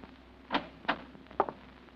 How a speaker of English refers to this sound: It's 11 o'clock when you finally get back to 1214A Euclid Avenue and fit Oliver's key in the lock on the front door.